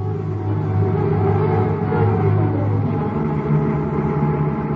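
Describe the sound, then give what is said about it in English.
A steady, low engine drone and road rumble, like riding inside a car cruising along at an even speed, heading out past Lincoln Park and southeast toward the highway, with no talking and no sharp changes throughout. “We took a taxi to the garage where I picked up my car, and we headed out past Lincoln Park, turning southeast for the highway.”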